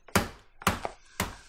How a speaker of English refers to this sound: Hammer some meat. Yeah. This is so cathartic. I'm sure it makes for great podcast audio. I may just take this whole thing out. No, you gotta leave it in. It's like, people need to know what it sounds like.